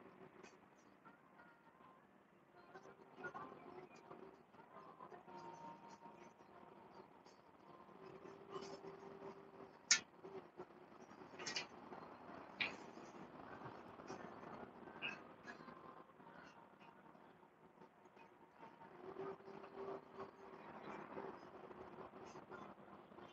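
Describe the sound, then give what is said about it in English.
A steady rumble of a passing train rolls on throughout, with a few sharp metallic clacks and squeals rising above it near the middle before it settles back to a low drone. “We done with that train tonight. I tried to avoid the train, but, you know.”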